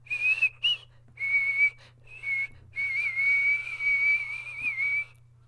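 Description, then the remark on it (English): A person whistles a slow, wavering tune from the film Mulan in a series of sustained phrases separated by short breaths, clear with a faint low hum underneath and no talking. “Probably the best whistle job I've ever done.”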